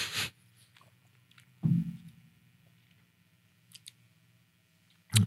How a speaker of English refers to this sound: Pause for chewing. Here, yeah. Thanks, Hi Chu. Yeah, thanks, Hi Chu.